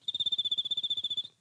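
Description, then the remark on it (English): A person imitates cricket chirping with their voice: a brief high, steady trill pulsing rapidly for just over a second, clear, with no talking, then it cuts off. “There's crickets.”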